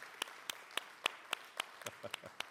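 Applause from a small audience: about ten crisp, evenly spaced hand claps in a steady rhythm, fairly soft and sparse rather than a dense roar, with no talking.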